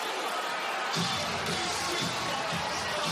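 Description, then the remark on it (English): A stunned basketball crowd at the Toyota Center murmurs in a steady, subdued wash of noise after a Rockets timeout, their team's seven-point fourth-quarter lead having turned into a six-point deficit; no cheering or applause rises out of the dense background rumble. “A stunned Toyota Center crowd has watched a seven-point fourth-quarter lead turn into a 6-point deficit.”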